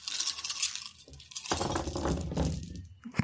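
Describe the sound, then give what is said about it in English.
A handful of dice clatter and tumble across a hard tabletop, a busy rattle of small hard objects knocking and bouncing before settling. “These dice. Look at this.”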